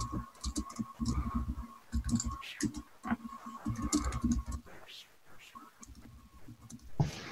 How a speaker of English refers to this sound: It's a lot of fucking dice.